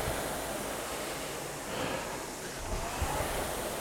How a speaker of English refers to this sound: On a podcast, I'm afraid you just have to listen out for the whoosh of my flywheel to know when I'm taking a stroke.